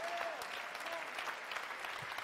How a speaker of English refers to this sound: I think that's worthy of a really big clap, don't you?